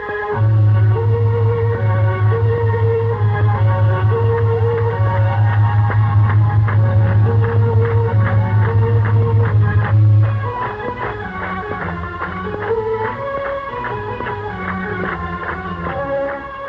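A keyboard solo plays the traditional Japanese melody "Sakura Sakura", its stepped notes ringing over a loud sustained low drone that drops away about two-thirds through. No one speaks.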